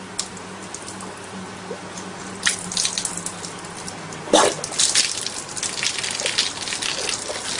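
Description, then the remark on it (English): Cheap beer pours and splashes steadily as it spills out onto a surface and is wasted, with bursts of louder gushing and spattering partway through. No one speaks. “Thank God it's only like piss water he's actually fucking wasting and not real beer.”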